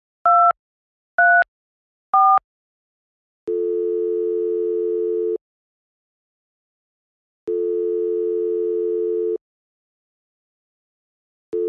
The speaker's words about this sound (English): She picks up her phone and dials.